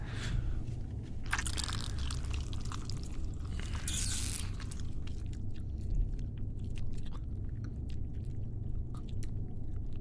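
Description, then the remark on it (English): A wet bite followed by continuous moist sucking and slurping as a vampire sips a person's blood, with small smacking clicks scattered throughout over a steady low droning background. No one speaks. “I am going to have a sip.”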